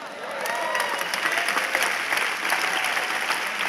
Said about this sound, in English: That is the worst clap I heard the whole weekend.